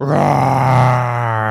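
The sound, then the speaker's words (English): A person lets out a loud, sustained roar in imitation of a tiger, a deep growling voice with strong low harmonics that holds steady for over a second before easing off slightly. “Then she heard a big roar.”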